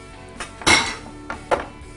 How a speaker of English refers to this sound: All right, so let's just pour this in here.